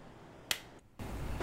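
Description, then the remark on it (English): A single sharp hand clap as a palm slaps shut over a flipped coin in a coin toss deciding between Battletoads and Double Dragon or Tecmo (it lands tails), cracks once over a low steady hiss with no talking. “We heard the clap.”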